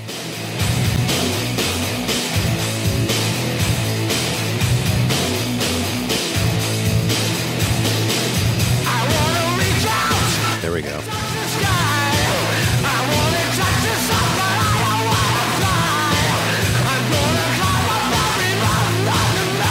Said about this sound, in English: it sounds as if he's shrieking his vocal cords out. I just want to hug him. It had to have been painful.